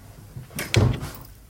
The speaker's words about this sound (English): That's a thud. That's a thud and a half. It sounds like a door being closed to me. It legitimately sounds like someone closing a giant wooden door.